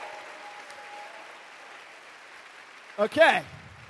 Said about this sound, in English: So now you can give me a round of applause for the first Ignite of the evening.